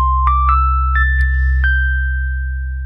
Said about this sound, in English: We do an intro, and then I play the segment chime when I think I've made a witty comment.